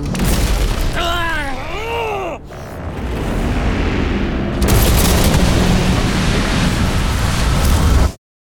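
Wailing, siren-like tones sweep over a rumbling roar, then a Marigold-class cruiser spacecraft crash explodes into a loud, sustained burst of crashing noise that cuts off abruptly.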